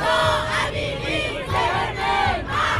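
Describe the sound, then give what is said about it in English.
A large crowd of protesters in Iran chants slogans in unison, shouting death to the dictator while tearing down posters of Ayatollah Ali Khamenei and Ayatollah Khomeini; loud massed voices rising and falling in rhythmic shouted bursts roughly every half second, with no single speaker standing out. “Protesters tore down posters of the supreme leader of the Iranian regime, Ayatollah Ali Khamenei, and late leader Ayatollah Khomeini, shouting death to the dictator.”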